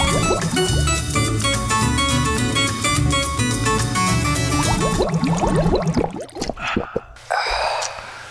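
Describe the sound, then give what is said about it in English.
Ice-cold Coca-Cola Zero soda pours steadily for several seconds in a break room, then a few quick gulps follow, ending in a satisfied gasp after drinking, with no talking. “I know I'm supposed to just drink water because that was an ice cold Coca-Cola Zero.”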